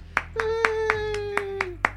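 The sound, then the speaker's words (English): About seven sharp, evenly spaced claps ring out as a brief round of applause, with a steady, slowly falling hum-like tone held beneath most of them. “Hey, round of applause. Round of applause, everyone.”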